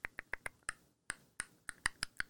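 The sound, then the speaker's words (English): Keyboard typing: about a dozen crisp, sharp key clicks in an uneven rhythm, with a brief pause partway through. No voices, just the keystrokes alone at a moderate level. “I was just listening to your typing skills.”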